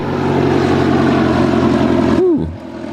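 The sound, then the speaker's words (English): A small propeller plane at the Palo Alto Airport roars loudly and steadily, then the drone cuts off abruptly and its pitch sweeps downward as it fades. No one speaks. “It's business as usual at the Palo Alto Airport with numerous small planes taking off and landing.”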